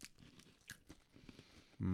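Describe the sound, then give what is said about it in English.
Crisp crunching of someone biting and chewing a Crunchie honeycomb chocolate bar, a series of irregular snaps and crackles, followed by a louder voiced sound at the end. “Oh, Crunchy's good, actually. I know why it's called Crunchy anyway.”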